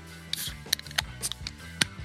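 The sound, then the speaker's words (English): Beers being cracked open and poured into a glass: a quick series of sharp metallic clicks and snaps with brief bursts of hiss, spaced irregularly over about two seconds, with no talking. “So let's get to it and crack the beers.”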